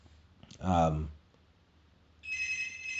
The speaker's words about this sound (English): Jesus, who's that? Sorry, you know when someone calls your mum's phone, you're not picking up. You're not going to talk to an auntie or something.